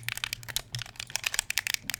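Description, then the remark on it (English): Rapid, irregular plastic clicks from the buttons of an Xbox 360 standard controller being pressed, dozens of sharp taps tumbling over each other with no voices. “That is an Xbox 360 standard controller.”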